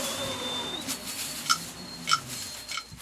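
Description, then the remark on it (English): Night ambience in a dense forest with a cool breeze in the trees, birds whistling and frogs croaking: a thin, steady high whistle fades, then three sharp, evenly spaced croaking chirps ring out over a soft, low background hum. “A cool breeze blows through the trees of a dense forest. Birds whistle, frogs croak, and vermin scurry about.”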